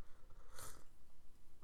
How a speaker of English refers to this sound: So I have some green tea here, so I'm gonna take a sip of that, because we all know in podcasts there's nothing worse than mouth sounds, and that always happens when I'm dehydrated. So one sec.